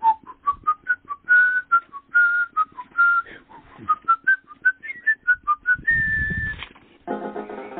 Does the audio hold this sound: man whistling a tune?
yes